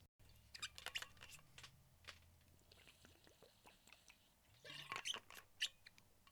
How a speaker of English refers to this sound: Pardon my water break. You know me. Got to get my hydration going on.